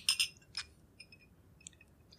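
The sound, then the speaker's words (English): Glasses of a drink with a splash of bourbon clink together in a toast, two bright chimes at the start followed by a few fainter ringing taps as the tone fades, with no talking. “But anyway, so here's to the episode. Cheers.”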